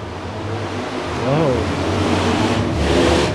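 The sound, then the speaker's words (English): A loud motorbike engine roars by, its droning pitch rising and dipping as it passes, with a broad rush of noise swelling again toward the end. “Is that a motorbike? I don't know, but they like Thailand and Bali. That was a loud fucking engine.”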